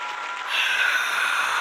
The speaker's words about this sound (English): Crowd's going wild.